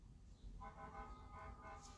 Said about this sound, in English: Well, looks like some noise out there. Hold on. Sounds like fire truck. It's in the morning.